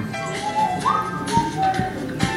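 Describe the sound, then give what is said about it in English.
A person whistles a few short, flat notes imitating a bird call, held at nearly one pitch with a brief upward slide, over a low background hum. “So yeah, monotone whistle.”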